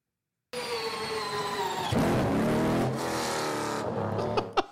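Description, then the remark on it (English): A hybrid race car pulls away from pit road, running fully electric for about the first 40 miles an hour with a high electric whine of rising tones, then the combustion engine kicks in with a loud, rough roar that builds and then fades. “That is full electric. For like the first 40 miles an hour. And kicking on the engine.”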